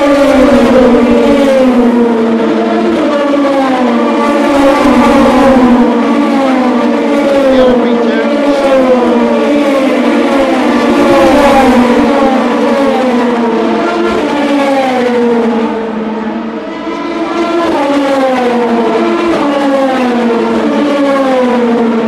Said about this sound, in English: Gibson engine LMB2 sounding very much the same. We're waiting to see the Rebellion. We got the Collis car.